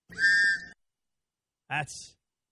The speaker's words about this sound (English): No Canes goal horn today, either. Don't interrupt me with that, because I associate that sound with happiness. So give me something else, anything else, as a substitute to the goal horn. Fine. That'll do. That'll do it. A whistle.